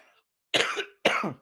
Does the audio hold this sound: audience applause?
no